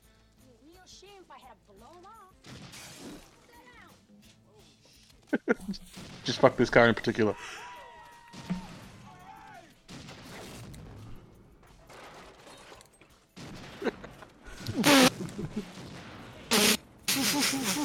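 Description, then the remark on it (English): Loud, booming gunshots from a video game hand cannon firing futuristic explosive rounds, in irregular bursts, some rapid and some spaced apart, with explosive blasts mixed in while a man talks over the action. “This fucking hand cannon, that's insane. It's got some like, futuristic explosive rounds going.”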